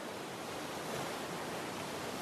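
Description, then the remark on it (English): Steady, dense rushing of a small waterfall plunging into a deep pool at its base and making white foam, a continuous roar of falling water with no breaks, at an even volume throughout, with no voices. “The water from the falls creates a picturesque white foam.”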